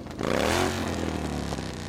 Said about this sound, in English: And Harley Davidson tried to trademark the sound of a revving engine.